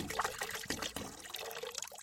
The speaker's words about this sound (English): is drinking water. Yes, I was.